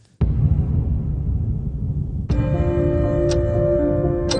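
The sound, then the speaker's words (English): Sharp, loud clock ticks land about once per second over a deep cinematic rumble in a movie trailer, which swells into a sustained dramatic drone partway through. No one speaks. “With every second that ticks by, the future is running out.”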